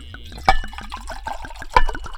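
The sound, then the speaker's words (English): Liquid pours into glasses, a steady gurgling trickle with rising bubbly tones, broken by two sharp clinks of glass against glass; no one speaks. “Let's go on and get these libations poured up.”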